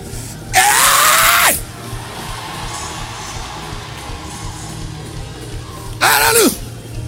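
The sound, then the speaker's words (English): A crowd, urged to scream that it is well, screams loudly in two bursts: a sustained roar lasting about a second, then quieter murmuring, then a second shorter scream rising and falling near the end. “Come on, scream like we know that it is well.”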